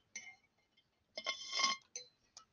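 A few bright glass clinks and ringing taps, with a louder cluster of clattering in the middle, as a glass is handled during a drink of water. No one speaks.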